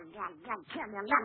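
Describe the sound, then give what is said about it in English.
A voice imitates a little pet duck named Herman looking on hungrily in a kitchen at breakfast, making a quick series of about four buzzy, nasal quacks with rising and falling pitch, moderately loud, with no other talk. “we find Gracie in the kitchen getting breakfast, while her little duck Herman looks on hungrily.”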